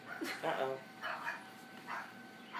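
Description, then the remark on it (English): A dog barks in three short, harmonic bursts spaced about a second apart, fairly quiet, with no other sound competing. “Crazy dog.”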